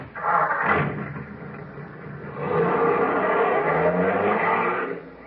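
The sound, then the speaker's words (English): A car engine sputters to life with a rough burst, settles briefly, then roars louder and steadily as the vehicle pulls away, fairly loud, with no voices. “Now, get in the car, everybody.”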